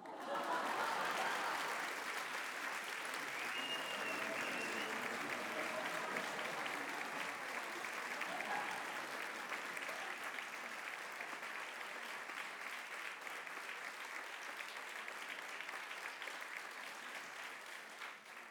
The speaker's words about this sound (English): Can I get some applause? Is it possible to get some applause? Can we do that?